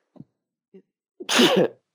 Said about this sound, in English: He didn't dab that one out. No. I sneezed into my shirt.